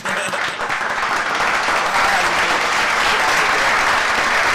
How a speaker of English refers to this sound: A lot of people dropping their kids off because it makes me feel so good to see all these black children going to college. Yep. Yeah. One more clap for all that.